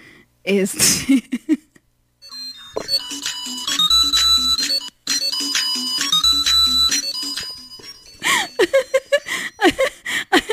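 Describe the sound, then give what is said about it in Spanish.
A tinny Christmas bell melody from a video plays through a phone speaker, volume turned up, for about five seconds, its chiming phrase repeating twice, with laughter and voices just before and after. “Y es el de las campanas navideñas, según yo, ¿no?”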